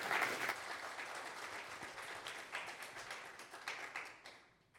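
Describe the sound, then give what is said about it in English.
A crowd claps together in dense, steady applause, given as a hand clap of praise to God, that starts loud and gradually thins and fades toward the end, with no voices over it. “Give God a hand clap.”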